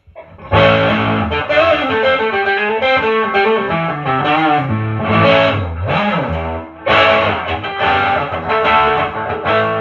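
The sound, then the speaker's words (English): Overdriven electric guitar played through a Mad Driver overdrive pedal plays a loud, gritty riff of sustained chords and bending notes, with a brief dip near the end before the crunchy tone returns; no voices. “That's Mad Driver. Super cool.”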